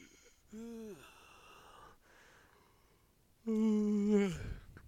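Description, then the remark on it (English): A stifled, held-in sneeze: a short strained voiced gasp, a pause, then a longer tense gasp that ends in a brief muffled snort-like burst. Fairly loud, with no talking. “I feel like I've perfected the holding in the sneeze.”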